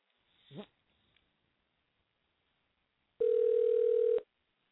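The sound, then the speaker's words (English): A loud, steady telephone dial tone hums for about a second after a stretch of near silence, as a dropped call is redialed, preceded by a brief faint sound near the start. “We're going to try once more to dial out. So our call has dropped.”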